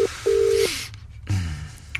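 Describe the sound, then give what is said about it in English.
Telephone keypad dialing tones as someone makes a quick phone call: a quick electronic beep followed by a longer steady one, fairly loud, then a hissy pause and a low humming tone with no voices. “Just making a quick phone call.”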